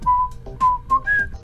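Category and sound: sound effect, whistling a tune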